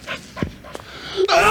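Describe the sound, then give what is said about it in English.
A dog pants, a few quick breathy huffs spaced unevenly, ending in a louder rush of breath. “The dog's come through here four times already.”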